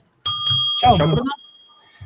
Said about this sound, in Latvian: Zvaniņš.